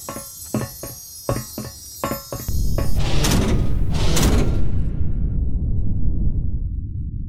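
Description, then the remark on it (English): A heavy door opening: a quick run of rhythmic mechanical clanks, then a loud hissing whoosh as it slides open, trailing off into a low fading rumble. No one speaks. “Okay, I'm assuming we should maybe go through that door.”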